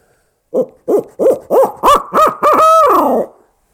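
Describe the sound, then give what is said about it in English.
A loud owl call, likely from a handheld caller, used as a locator call to make turkeys gobble, with six quick rising-falling hoots building in intensity and ending in a long, drawn-out descending wail, typical of barred owl caterwauling. “And if that doesn't work, then maybe do some more caterwauling.”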